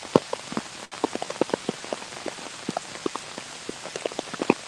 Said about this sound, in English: Are you stressed? Have you been overthinking? Let the noise of the rain begin to calm you.